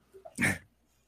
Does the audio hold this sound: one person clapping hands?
no